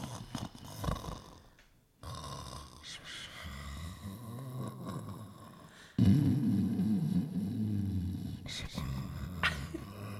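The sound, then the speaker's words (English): A person loudly imitates someone's snoring with their voice, making harsh, rattling snores on both the inhale and the exhale: a brief burst, then two long, sustained stretches. “You snore. Yeah. Like crazy. It sounds like this.”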